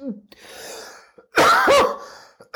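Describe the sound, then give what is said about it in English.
A loud cough bursts out after a raspy breath, followed by a throat-clearing rasp and a short final hack, with no talking. “Wow, I am really struggling today with my cough.”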